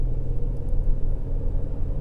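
car interior road rumble

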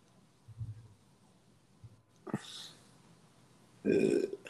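burp

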